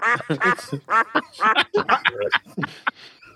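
A duck quacks in a rapid, uneven run of about a dozen nasal, raspy calls, loud, with brief gaps between bursts and no talking.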